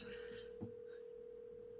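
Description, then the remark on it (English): An outgoing phone call to a friend ringing out over a speakerphone during a phone-a-friend segment on the show Beard Oil Roulette, heard as a steady, continuous electronic tone with a faint rustle near the start. It is fairly quiet, with no one speaking and no one answering. “I'm putting my speakerphone too.”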